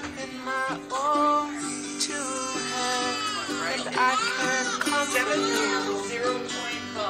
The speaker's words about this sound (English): But I do want you to hear the cry of a newborn baby as he gets put on the scale to weigh him, one of his first breaths. Listen to this cry.